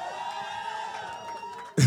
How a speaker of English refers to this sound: The way you shouted, the shouts went off too quickly. I said next week Sunday is the anniversary. That shout is not shouting.